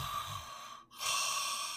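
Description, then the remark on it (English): A voice imitates the snore of a sleeping 12-year-old boy, a breathy, rasping inhale, a brief pause, then a louder hissing exhale. Fairly quiet, with no talking. “He's probably snoring. He's young. He's 12, but he's got a snore.”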